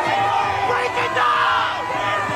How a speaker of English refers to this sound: House relocated their staff because of pro-Palestinian protesters threatening to breach the security fence. I got a little bit of audio from this in front of the White House.